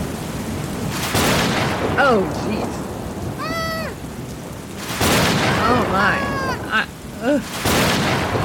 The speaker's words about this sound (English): Oh, my gosh. Oh, no. The thunderstorm's getting louder.